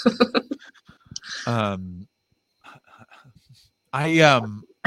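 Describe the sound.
A person lets out drawn-out, voiced yawns, two long stretched vocal sighs separated by a pause, fairly loud, with some quick breathy mouth sounds at the start.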